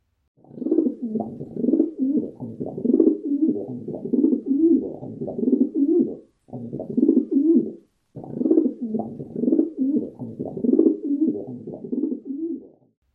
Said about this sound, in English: the soft and easy cooing of the rock pigeon